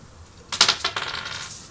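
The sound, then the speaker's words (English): Dice are rolled onto a hard tabletop during a game, a few sharp clicks followed by a brief, softer rattle as they tumble and settle. No voices are heard. “Damn, guys, we're good at rolling dice.”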